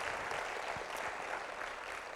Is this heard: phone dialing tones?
no